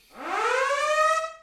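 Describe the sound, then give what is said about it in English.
A news alarm: a single loud siren-like tone rises quickly in pitch and then holds steady, rich with harmonics, lasting just over a second before cutting off. No voices are present. “Is that the alarm? It's what an alarm? That noise? The news alarm?”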